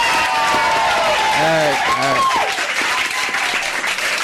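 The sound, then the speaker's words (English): A steady wash of audience applause on the show Late Night Radio after a game, loud and dense, with a brief cheer or whoop rising above the clapping partway through. “Everyone, give it a round of applause.”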